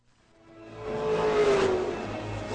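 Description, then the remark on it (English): Race car engines from a scene in the movie Cars rev and roar, swelling from faint to loud over a couple of seconds as a rising engine whine sweeps past, with no one speaking. “I love this scene we're about to see from the movie Cars.”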